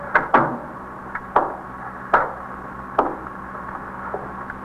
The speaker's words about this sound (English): Should I close the door? Yes, please.